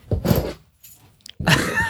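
Keys jangle in two short bursts, a rattling metallic clatter, then a quiet gap with a faint tap before a second, brighter jingle.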